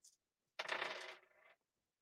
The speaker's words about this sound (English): So I take the other 4 dice and I re-roll them.